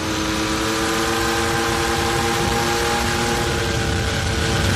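A vintage airplane engine runs steadily, a loud, continuous rumbling drone with a throaty, car-like growl that holds constant throughout, with no voices.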